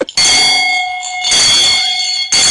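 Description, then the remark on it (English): A loud, continuous electric bell rings with a steady metallic buzz, briefly cutting out after a short first burst and again near the end before resuming, insistent with no voices. “I for ring the bell.”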